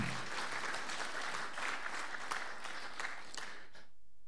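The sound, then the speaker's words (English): Children clap together in a steady, dense burst of applause that holds for several seconds, then stops abruptly. No talking is heard over it. “Give yourself a clap.”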